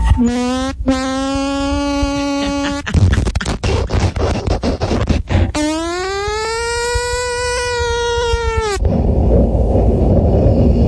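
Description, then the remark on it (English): A voice imitates a car arriving at the police station: a long steady hum, then scratchy crackling bursts, then a rising and falling engine-like drone before it cuts to hiss. Loud, with no other talk. “That was now, me doing arrival at the police station.”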